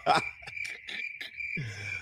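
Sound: crickets chirping sound effect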